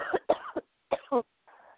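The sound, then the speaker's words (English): A fit of coughing: a quick run of three harsh coughs, a short pause, then two more, ending in a softer breathy exhale. No one speaks. “Sorry, before I cough more in your ear.”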